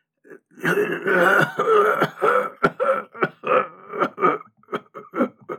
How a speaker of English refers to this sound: that cough sounds terrible. Have you ever considered quitting smoking?